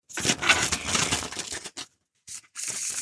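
A deck of cards being shuffled: a long crisp riffling flutter, a brief pause, then a couple of shorter papery riffles, with no voices.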